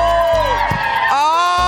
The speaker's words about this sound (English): What a fun, happy crowd at Rockefeller Center.